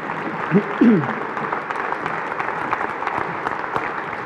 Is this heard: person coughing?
no